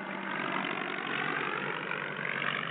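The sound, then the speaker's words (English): The engines of an Eastern Airlines Lockheed Constellation airliner, flown by Captain Eddie Rickenbacker, run in a steady, dense, unbroken drone with a rough, buzzing texture, holding an even loudness throughout with no voices. “in 1953, taking the controls of an Eastern Airlines Lockheed Constellation airliner and flying to Miami, thus showing how safe airline travel had become.”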